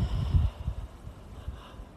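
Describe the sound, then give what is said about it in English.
A soft, low throat clearing during a guided breathing and stretching exercise, a couple of rough bursts at the start, then faint breathy rumbles trailing off with no talking. “Clear your throat.”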